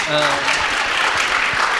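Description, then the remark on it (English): Steady audience applause fills the space, a dense wash of many hands clapping at once, with a faint voice briefly audible beneath it at the start. “I just got to remind you guys to clap.”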